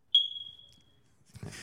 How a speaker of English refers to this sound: He loves himself a good smoke detector beep.